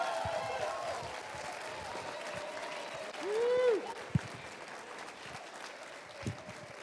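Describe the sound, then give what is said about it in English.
A crowd claps steadily throughout for a kids' panel in the morning, a dense, even patter of applause, with one rising and falling whoop rising above it about halfway through and a sharp clap-like snap right after. “So please give a big round of applause for our kid panel this morning.”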